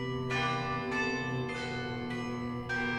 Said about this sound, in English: The central square clock tower sounds, signaling it is 9 o'clock p.m.